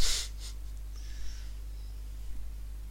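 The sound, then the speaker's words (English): A short, sharp, breathy sneeze bursts out at the start, followed by a softer puff of air, then only a low steady hum and faint rustling remain. “Yeah, I get a good old sneeze in the eye.”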